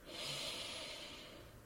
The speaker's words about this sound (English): Okay, so on the count of three, Take a deep breath in. One, two, three.